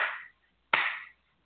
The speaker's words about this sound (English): After all that's been said and done, and this is where I'm going to do my slow clap.